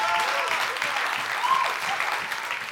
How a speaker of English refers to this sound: Oh, I think you should clap for Jesus.